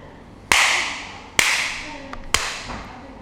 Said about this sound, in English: You clap, please